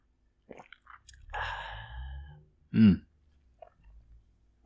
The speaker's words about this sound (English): But can't leave you entirely without just audibly having another sip of this delicious bird of prey.